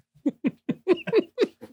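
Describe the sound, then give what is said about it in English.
A person imitates a dog barking with a quick run of about seven short, voiced woofs, moderately loud, in a bouncy, uneven rhythm with no other talking. “Bark, bark. Woof, woof, woof. Come here, little puppers. Woof, woof.”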